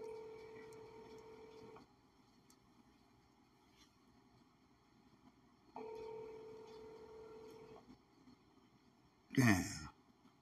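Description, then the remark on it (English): A Google Voice phone call rings back twice, each steady buzzing ring lasting about two seconds with a long pause between, then a brief loud crackle as the call seems to connect. “Please state your name after the tone, and Google Voice will try to connect you.”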